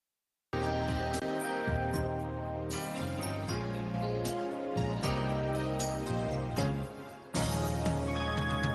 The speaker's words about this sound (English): Right here and right now, it's time for our musical selection.